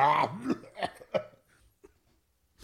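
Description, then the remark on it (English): A short run of about four harsh coughs in quick succession, fairly loud, trailing off into near silence with a faint soft sound near the end. “I don't know how to spell out coughs.”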